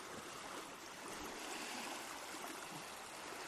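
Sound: ocean waves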